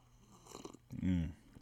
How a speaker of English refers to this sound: I'm going to take a sip of my Wolfie's whiskey from Rod Stewart, hold on.